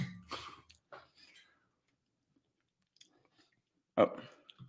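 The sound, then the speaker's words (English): Crunchy chewing of a Red Hot snack, a few bursts of crisp munching with quiet pauses between, then one loud crunch near the end. No clear speech, just mouth noises. “I am kind of hungry. Mm. It's still got a crunch, man.”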